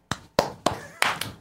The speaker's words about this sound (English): Clap!